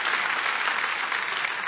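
A crowd applauds steadily, a dense, even wash of many hands clapping at a constant loudness throughout, with no voices standing out.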